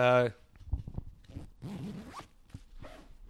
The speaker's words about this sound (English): Do you want to hold the mic close to this and get the zipper sound?